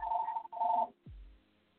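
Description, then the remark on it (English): A telephone rings in the background in two quick back-to-back bursts of bright, buzzy tone, then cuts off into a low dull thump and a quiet tail. No one speaks. “They ringing in the background.”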